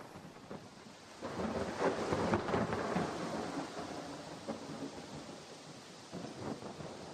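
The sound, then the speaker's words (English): Heavy, cool rain pours down in a dense, steady hiss, swelling louder for a couple of seconds early on before settling back to a constant downpour, with no voices. “Heavy rain, but coolish.”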